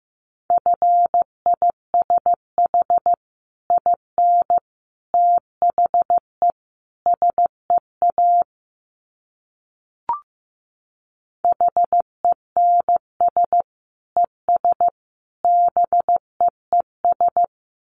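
Morse code sent at 15 words per minute: a single steady mid-pitched tone keyed into short and long beeps in quick groups, broken by a pause partway through with one brief click.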